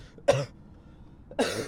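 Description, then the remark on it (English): Two loud coughs about a second apart, each a sharp harsh burst with a brief raspy tail, separated by near silence. “That's an authentic cough. Stage cough.”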